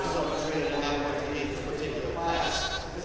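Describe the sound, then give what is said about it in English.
A sheep bleats repeatedly, its wavering cries filling the whole moment, with shuffling hooves and farmyard movement underneath. “I think it's fun having like sheep, because once you get to train him, he's not so crazy.”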